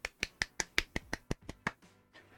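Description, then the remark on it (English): Brief clapping: about ten sharp, evenly spaced claps in quick rhythm that trail off after a couple of seconds, with no voices. “Hey, all you hyper PC crowd, let's give her a hand.”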